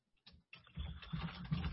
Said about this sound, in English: I can hear him typing, so as we speak.